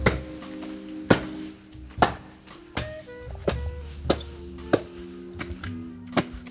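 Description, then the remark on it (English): Someone chops wood with a small axe on a patio in Kyiv, Ukraine, to fire up a grill: about eight sharp, woody strikes land roughly once a second, with a soft sustained musical tone humming underneath. “he's chopping wood with this little axe.”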